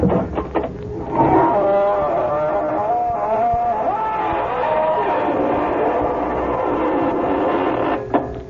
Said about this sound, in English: Good evening, friends of the Inner Sanctum. This is your host to welcome you through the squeaking door.